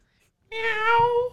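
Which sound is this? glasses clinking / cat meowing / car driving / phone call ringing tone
cat meowing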